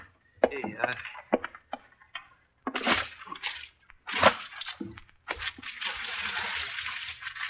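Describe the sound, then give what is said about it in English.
A bucket of water is dumped onto a fire, giving a sudden splash that turns into a long, steady hiss, after a few scattered knocks and short bursts of voices. “Put that fire out, kid. It's too late now, mister. Give me that bucket of water”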